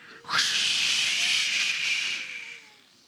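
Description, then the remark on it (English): A church crowd imitates the roaring of a mighty windstorm from a Pentecost reading, a loud, breathy whooshing hiss that rises suddenly, holds steady for about two seconds, then tapers away. “On the day of Pentecost, all the believers met together in one place, and suddenly there was a sound from heaven like the roaring of a mighty windstorm. Let me hear your best windstorm.”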